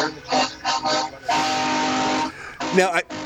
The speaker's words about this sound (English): We hear those honking trucks go by